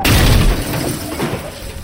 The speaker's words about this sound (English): So when the car in the other lane swerved into my path and smashed into me head-on, I was completely unprepared.